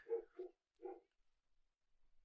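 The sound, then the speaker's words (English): A neighbor's dog barks three times in quick succession, fairly faint, followed by quiet with only low background rumble. “I don't know if y'all heard my neighbor's dog.”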